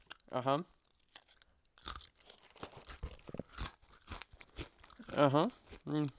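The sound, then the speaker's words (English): Crunching of crisp, lightly salted Wheat Thins Originals wheat crackers being chewed, a rapid series of dry, crackly bites, bracketed by short hummed murmurs from the eater at the start and near the end. “Better eat several more.”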